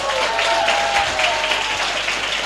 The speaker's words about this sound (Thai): ขอเสียงขอบคุณนะครับขอเสียงปรบมือขอบคุณนะครับนักธุรกิจแอมเวย์นะครับระดับทัพทีมนะครับ